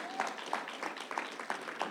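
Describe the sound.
A church audience applauds its pastor, a dense, steady crackle of many hands clapping at once, with a few raised voices and brief whoops mixed into the clapping.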